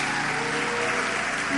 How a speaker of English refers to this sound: Clap for them as they go back. Clap for them. Clap for them as they go back. Your clap is not a clap. It's now becoming a clap. It's still not a clap yet.